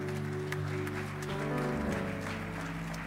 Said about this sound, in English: Is this too tight this morning? Loosen it a little bit with a clap at least or something.